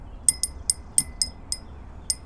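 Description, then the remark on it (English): Forks and spoons tap against a glass during a meal in a quick, uneven run of about seven bright, high-pitched clinks that ring briefly, with no voices. “Can we just eat one meal without you banging forks and spoons against a glass?”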